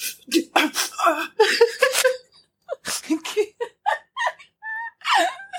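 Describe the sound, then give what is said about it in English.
A voice imitates heavy breathing: a quick run of loud, raspy huffs and gasps, some with a throaty voiced edge, broken by a short pause before more panting. “It was the breathing. Because we were so quiet, but we could, I could just hear, just...”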